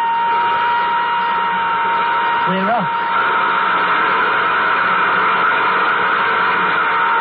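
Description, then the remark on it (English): Nuclear jet engines starting up: a steady, dense jet-engine roar with a faint high whine runs unbroken throughout, while a man briefly speaks a few words over it early on. “Cut in nuclear jet number two.”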